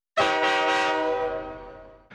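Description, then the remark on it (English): A single loud, sustained train-style air horn blast from train horns fitted on a Jeep, chord-like and harmonically rich, holding for nearly two seconds before cutting off, with a brief second burst starting right at the end. “I'm going to veto those train horns because it never fails. I soil myself every damn time.”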